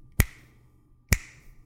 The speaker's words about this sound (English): Can you snap your finger three times?